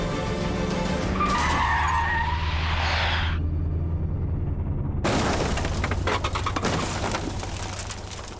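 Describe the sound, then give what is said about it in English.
A car brakes hard, its tires screeching in a loud, sweeping skid over a low engine rumble, followed by an abrupt burst of harsh, clattering noise like an impact with scattering debris. “On my signal, Chief Inspector, you need to apply the brakes and perform a reverse TVI.”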